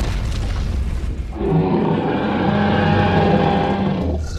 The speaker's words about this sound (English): That roar. Those yeah. footsteps and the roar.